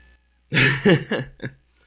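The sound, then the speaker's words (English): A cat meows into a microphone, a few short, throaty calls in quick succession, loud, with quiet before and after. “We have a cat down here who's meowing into the microphone.”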